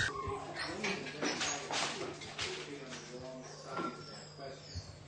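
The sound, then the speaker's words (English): Small puppies squabble over a bone, with a busy run of high yips, whines and snarling growls overlapping one another, plus a steady low hum underneath. “You're going to see a level of aggression that I think you would be surprised could come from a small puppy.”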